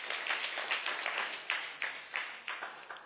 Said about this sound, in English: Clap for them to cheer them up.